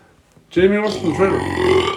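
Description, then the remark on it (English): A loud, drawn-out burp rumbles for about a second and a half, low and throaty with a rough, voiced texture, following a brief quiet moment. “That was a big burp.”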